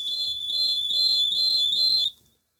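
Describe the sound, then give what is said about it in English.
A phone alert rings out as a bright, high-pitched electronic tone pulsing in a steady repeating pattern, loud and continuous for about two seconds before cutting off into silence. “I need this sound to clear. It's the phone.”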